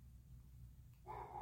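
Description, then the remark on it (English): A dog named Audie Bear barks in the background, a single drawn-out bark arriving near the end over a steady low hum. No one speaks. “I got my buddy Audie Bear barking back there, so I guess he was trying to tell me it's time to stop.”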